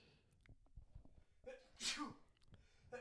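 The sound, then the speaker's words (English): A single sharp sneeze bursts out partway through, loud and breathy with a quick inhale before it, amid faint background noise and soft murmuring. “Bless you. Sorry about that, guys.”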